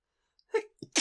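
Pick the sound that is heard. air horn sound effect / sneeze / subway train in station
sneeze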